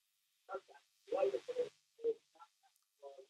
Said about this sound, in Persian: اگه ممکنه صدای تلویزیون تو کم کن که بتونیم با تلفن با هم دیگه صحبت کنیم.